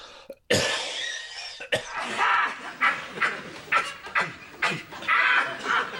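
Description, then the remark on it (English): A rapid series of harsh, hacking COVID coughs, about ten bursts in quick succession, fairly loud, with no talking in between. “Do you want a nice cough?”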